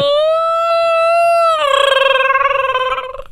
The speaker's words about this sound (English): There it is. Mm-hmm. Apparently, Bigfoot would howl for him.